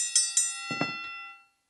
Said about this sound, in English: I have to hold the Kenny Bell because it'll ring forever.